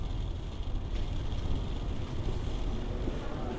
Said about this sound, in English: A big, blue, beat-up 1940s American car pulls into the yard. A local young tobacco farmer will take me into Pinar, where I can catch a ride back to Havana.